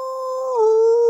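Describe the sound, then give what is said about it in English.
A single drawn-out, wolf-like howl rings out loud, holding a steady tone before sliding down in pitch about halfway through, with no talking around it: the Wolfman, a werewolf in the batter's box at a baseball game against Boston, howling at the full moon. “The Wolfman points above the scoreboard at the full moon and howls.”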